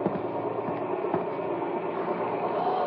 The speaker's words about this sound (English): What's that noise? Sounds like a plane. Hey, Al, come on outside. It's your helicopter.